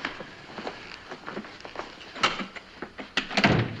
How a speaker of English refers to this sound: I'm going to have to kick the door down, Chief.